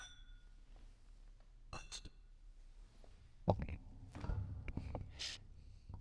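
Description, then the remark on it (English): Glasses clink together a few times in a toast over bourbon, short bright taps spread over several seconds, with soft handling and rustling noises between them and no clear talk. “Let's try this bourbon. Yeah, let's go ahead. Cheers. Cheers.”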